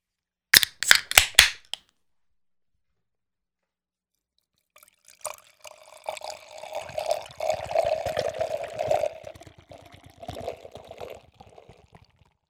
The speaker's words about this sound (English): Alesmith, for your 2020 releases, let's go ahead and pour this shit out, man.